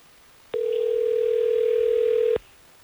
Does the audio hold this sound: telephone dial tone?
yes